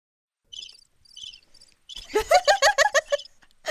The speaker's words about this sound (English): These crickets get a lot of use. Yeah, they really do.